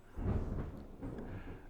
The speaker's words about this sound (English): Whoa, I hope these are getting picked up on. If these thunderstorms aren't getting picked up on your mic